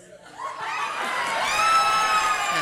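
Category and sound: crowd, audience applauding and cheering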